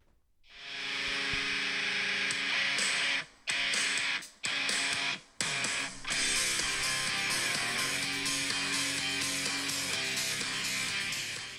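A loud, dense industrial metal track with heavily distorted guitars, driving through sharp stop-start breaks where the wall of sound cuts out abruptly before crashing back in. No voices are heard.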